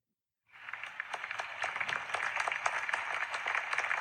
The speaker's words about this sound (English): That's the clap for Larry Lee. Let's hear the clap for T-Money Green.